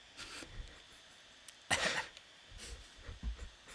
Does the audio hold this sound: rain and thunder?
no